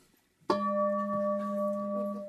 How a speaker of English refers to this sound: I want the bell to ring, I want the bell to ring, and then there's that sound.